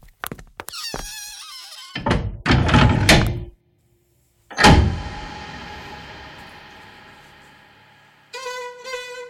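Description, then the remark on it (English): A door creaks open with a squeaky hinge and some rattling, then swings shut with a loud slam whose echo slowly fades away before a short squeak at the end. “No, not by the window. I'm leaving by the door.”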